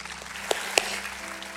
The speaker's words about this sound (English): Can we give the Lord a hand clap of praise for everybody that accepted Christ today? God bless you guys. You were great.